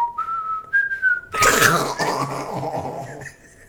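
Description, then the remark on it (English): A person imitates the whistle of a giant flying snake, whistling a few short, steady notes, then breaks into a loud, breathy burst like a cough or laugh, followed by a faint final whistle. “What is it whistling when it comes up behind you?”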